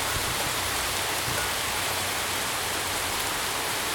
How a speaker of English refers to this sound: So the rain arrived, which is good. We haven't had a good rain in a week or so.